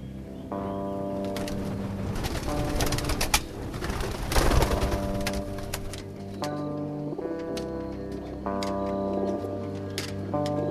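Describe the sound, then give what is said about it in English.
Racing pigeons returning home coo steadily, their low, warbling calls overlapping and repeating for several seconds, with scattered sharp clicks and taps mixed in. No one is speaking. “And tomorrow morning, when the sun comes up, just 4 of their birds will finally make it home.”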